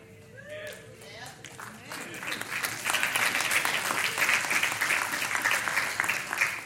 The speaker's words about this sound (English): Notice only the women are clapping.